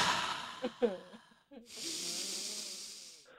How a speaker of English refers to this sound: Let's take deep breaths together. Okay, shall we?